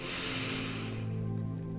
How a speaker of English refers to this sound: So let's begin with some deep breathing exercises. Deep breath in.